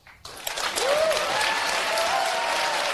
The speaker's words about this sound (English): And the crowd goes wild.